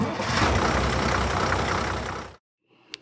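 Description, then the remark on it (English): A heavy flatbed truck engine, one of two trucks hauling a load of eggs to the Egg Fest site, rumbles steadily and loudly for about two seconds, then cuts off abruptly, followed by a faint clatter and a couple of sharp clicks. “It took 2 flatbed trucks to haul all of Fletcher's eggs to the Egg-ceptional Egg Fest site.”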